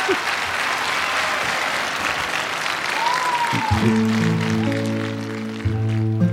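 A concert crowd applauds at the opening of the show in a loud, steady wash of clapping, with a brief whoop partway through. Sustained musical notes then swell in underneath as the applause continues.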